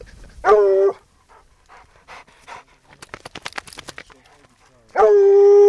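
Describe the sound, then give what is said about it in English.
A state trapper's two hounds give two loud, drawn-out baying barks, one at the start and one at the end, with quick, rhythmic panting and snuffling in between, while searching for a lion in the Black Hills. “With her are a state trapper and his two hounds, a state biologist, and her professor”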